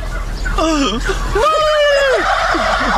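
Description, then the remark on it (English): A turkey gobbles in several warbling, rising-and-falling bursts, fairly loud, over a low murmur of background noise. “No, I actually talked to the turkeys, just like I do my cat.”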